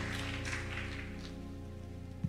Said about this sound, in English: Come on, y'all. Don't stop clapping. Don't stop clapping.